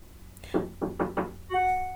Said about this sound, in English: So hang on a second. I'm going to retake number 2 because I've got a child knocking at the door and really hacking at the door.